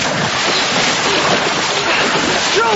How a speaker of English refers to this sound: Stroke! Stroke! Are we going anywhere? Are we going anywhere? We're splashing, me, …. I can't see!